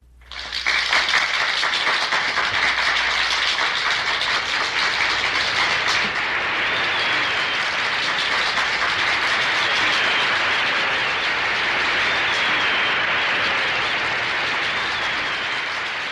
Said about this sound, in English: Roughly 1 minute of applause closes out side one. And that's it. Side two is identical. It's the exact same thing again. A long track of silence, followed by about a minute-long track of applause.